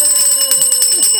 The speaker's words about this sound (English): Ring the bell, then. Make it interesting.